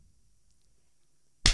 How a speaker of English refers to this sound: I'll give you a clap. If you want a clap, I'll give you a clap. Yeah, sure. Give me a clap. There you go.